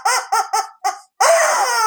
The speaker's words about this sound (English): Ladies and gentlemen, the rubber chicken, he's never appeared.